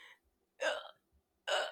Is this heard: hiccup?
yes